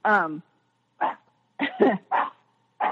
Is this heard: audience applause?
no